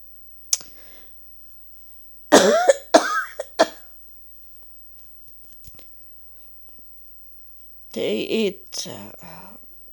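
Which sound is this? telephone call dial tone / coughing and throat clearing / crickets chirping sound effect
coughing and throat clearing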